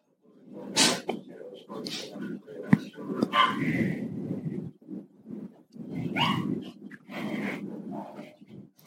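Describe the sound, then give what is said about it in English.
A puppy barks and yips in repeated bursts, interspersed with snuffly breathing and snorting, with brief pauses between the outbursts. “Oh, puppy.”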